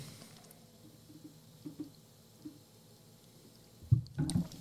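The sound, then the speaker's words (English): Soft swishing of a drink swirled in a glass after a drop of water is added, a few faint sloshes spaced apart, ending in a louder burst of handling and clinking. “Give it a little swirl and then try it again.”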